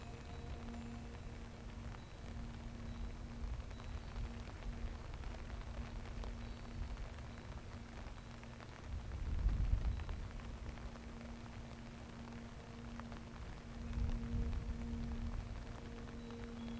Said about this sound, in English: You watch the storm for a short while.